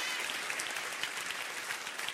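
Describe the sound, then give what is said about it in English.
A crowd claps steadily for a couple of seconds, the dense, even patter of many hands with no voices standing out, as listeners applaud during a sermon. “Come on, clap your hand.”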